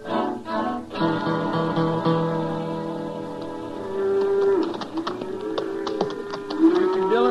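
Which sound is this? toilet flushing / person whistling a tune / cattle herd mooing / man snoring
cattle herd mooing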